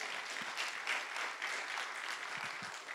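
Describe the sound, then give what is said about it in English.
An audience claps hands to Jesus Christ during a sermon, a steady, dense wash of applause that fills the space evenly for several seconds, with no voices standing out above it. “Someone clap your hands to Jesus Christ.”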